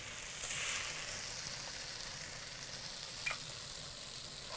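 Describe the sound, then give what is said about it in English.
Chicken for chicken cacciatore sizzles steadily in a frying pan, a continuous hissing crackle with a couple of brief sharper pops. No one speaks over it. “Okay, so now what we're going to do is add your chicken.”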